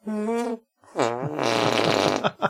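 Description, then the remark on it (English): Loud musical arm fart noises: a short tonal buzz, a pause, then a long sputtering blast that drops in pitch, ending with two quick squelchy pops. “Now, last time I ended with arm farts. I did my musical arm fart noises.”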